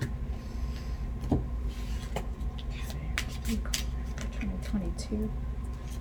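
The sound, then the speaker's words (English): A deck of cards being shuffled, with a few short, crisp papery bursts scattered over several seconds, against a steady low hum and faint muffled voices. “I might edit this out because it's... The shuffling.”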